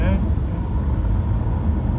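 Steady road traffic rumbles, a continuous low roar of vehicles driving past without any clear break or single standout pass.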